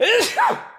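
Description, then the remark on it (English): A single loud sneeze: a rising voiced intake, a sharp noisy burst, then a brief trailing vocal exhale, all within about a second and with no other sounds. “I'm too cheap for a sneeze button, so you're just gonna have to excuse me.”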